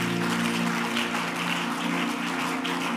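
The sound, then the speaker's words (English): An audience claps together in a steady, continuous wash of applause lasting the whole moment, fairly loud and even, with a low room hum underneath and no one speaking. “You didn't clap well.”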